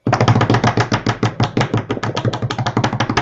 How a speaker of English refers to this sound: And what is our first prize? Drum roll, please.